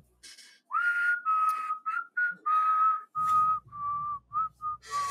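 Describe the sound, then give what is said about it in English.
A person whistles a short melody, a series of clear sustained and clipped notes with brief gaps, and a low background hum enters partway through. “I wish I could whistle.”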